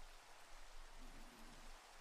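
Rain falls in a steady, even hiss, a dense patter of drops with no pauses. It stays soft and constant throughout, with no voices or other sounds.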